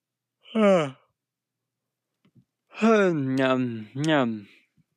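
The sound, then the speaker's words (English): A tired person yawns aloud: a brief voiced note first, then a long, drawn-out vocal yawn with a wavering pitch that trails off after a short pause. “Probably the fifth time I've yawned today.”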